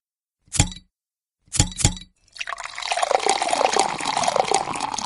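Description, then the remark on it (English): A few sharp clinks and a pop from a bottle being opened, then a steady glug of beer pouring into a glass, its pitch rising as the glass fills. “Oh, you already popped it?”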